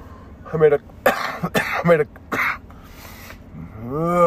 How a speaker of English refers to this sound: I hate fucking coughing on the mic, dude, but it's what it is.